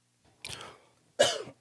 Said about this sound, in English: Man, I missed the cough button, but I couldn't hold it back.